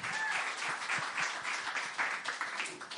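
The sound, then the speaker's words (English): An audience applauds as the final speaker is brought on. Many hands clap in a dense, steady wash of sound that holds at an even, fairly loud level for about three seconds, without any talking. “Shall we give her a round of applause?”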